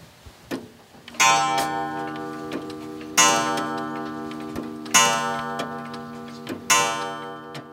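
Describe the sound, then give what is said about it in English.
Old clocks tick steadily in a home packed with over 100 clocks on an old farm in Fairview, West Virginia, their soft ticks running beneath four loud, ringing chime strikes that sound roughly every two seconds and hum as they fade. Nobody speaks. “His tidy little home, which sits on his grandparents' old farm in Fairview, West Virginia, is packed with clocks.”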